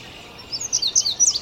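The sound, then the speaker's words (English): An indigo bunting sings from a maple tree above a marsh path, a run of high, bright notes in quick repeated pairs, fairly clear, over a soft background hiss with no talking. “Up above us, there's an indigo bunting singing up in the maple right there.”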